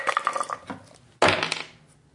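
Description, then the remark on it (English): Two six-sided Easy Roller Dice rattle in a quick run of small clicks, then land with a sharp clatter on a hard table and skitter briefly before settling. Fairly loud, with no voices. “Let's use the Easy Roller Dice.”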